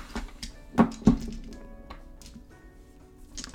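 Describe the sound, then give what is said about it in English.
Two quick knocks of dice being set down on a table, a short pause between them, followed by quiet room tone with faint shuffling. “Alright, set those down.”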